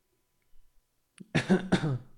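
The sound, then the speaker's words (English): A voice fakes a pair of dry coughs after a brief silence, the second cough following quickly on the first, loud, mimicking an unimpressed comedy club audience after a bad joke. “Someone would just cough.”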